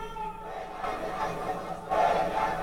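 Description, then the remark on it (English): A massive nationwide protest crowd of many people chants "death to America" in unison, a dense roar of many voices with rhythmic surges, swelling louder near the end as the chant rises. “It was like typical death to America.”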